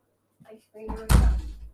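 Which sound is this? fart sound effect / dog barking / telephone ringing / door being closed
door being closed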